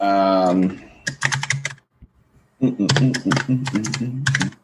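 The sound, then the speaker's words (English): Loud, rapid computer keyboard typing in two bursts of clattering keystrokes, separated by a brief quiet pause, with a short vocal sound at the very start. “This keyboard is super loud.”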